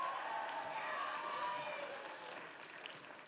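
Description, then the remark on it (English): Steady audience applause for two men during a church sermon, a dense wash of many hands clapping together at an even loudness that tapers slightly toward the end, with no voices standing out. “Could you guys give these two a round of applause?”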